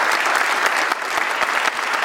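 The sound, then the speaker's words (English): Sustained audience applause at a film festival, a round of applause for Michael Moore for putting the festival together. A dense, steady wash of many hands clapping at an even loudness for the whole stretch, with no voices standing out above it. “I'm sure he's going to be fine, but let's, for the hell of it, let's just have a round of applause for Michael Moore for putting this festival.”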